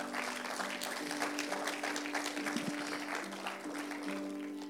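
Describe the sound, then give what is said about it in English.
A church audience claps in praise of God in a dense, steady wash of applause that carries on throughout, with a sustained tonal hum, like an organ or keyboard note, held underneath. “Let's give God a hand clap of praise for his work.”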